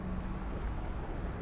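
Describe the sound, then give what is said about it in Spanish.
A steady, low rumble of street traffic as people cross a street on foot, fairly quiet and continuous, with a couple of brief faint hissy swishes but no distinct passing vehicle or voices. “Atravesamos la calle.”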